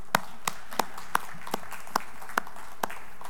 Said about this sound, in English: Thank you so much for the worship team. Let's give them a clap.